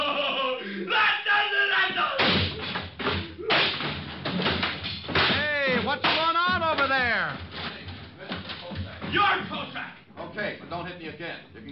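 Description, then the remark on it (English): Punches land in a fistfight, a few sharp thuds and whip-like smacks scattered among loud, strained shouting and grunting voices. “Okay, but don't hit me again.”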